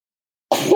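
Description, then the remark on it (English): A single sudden sneeze bursts out loud after a moment of silence, sharp and breathy, cutting off abruptly. “Excuse me. Bless you.”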